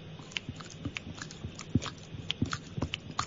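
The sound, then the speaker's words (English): A person imitates the cat Mucky lapping water, a quick series of wet tongue clicks, about a dozen short taps in a loose, uneven rhythm, alone without any talking. “I could see one of the young girls, I think it was Mucky, and she went over to the water and I just watched her drink for a full minute. Just that little tongue.”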